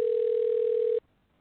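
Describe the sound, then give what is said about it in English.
A telephone ringback tone sounds over the line: one steady, moderately loud electronic hum lasting about a second, then cutting off abruptly into near silence. No one speaks. “It says it's ringing, right? Right. I hear it ringing.”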